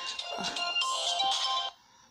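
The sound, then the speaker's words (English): A phone that was not silenced rings with a bright, melodic electronic ringtone with steady sustained tones, fairly loud, then cuts off abruptly into quiet. “Damn it, I forgot to take the settings off and silence my phone.”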